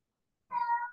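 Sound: cat caterwauling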